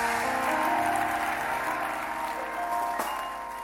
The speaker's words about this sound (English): Come on, clap your hands and scream.